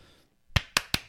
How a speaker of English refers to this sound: That was too many claps.